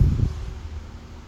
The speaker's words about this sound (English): 1. Listen to the rain and the wind.